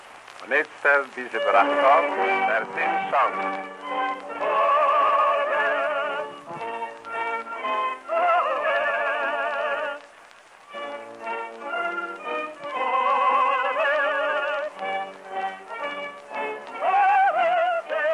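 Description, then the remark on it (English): Tinny, narrow-band theme song opening of the old radio show The Forward, with sustained, wavering tones like singing or a theme tune, rising and falling in phrases separated by brief pauses, fairly loud throughout. “And here is what the opening of The Forward sounded like.”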